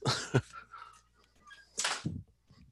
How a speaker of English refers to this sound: excuse me one second, I gotta close my door.